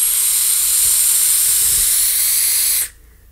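A loud, steady high-pitched screeching hiss from a vape atomizer holds for almost three seconds, then cuts off abruptly into near silence. No one speaks.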